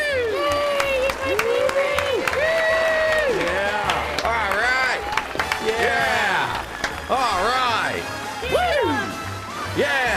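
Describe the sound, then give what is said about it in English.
A lively crowd claps and cheers continuously for about ten seconds, with whoops and excited shouting voices rising and falling over dense, steady applause. “Clapping. Get hype.”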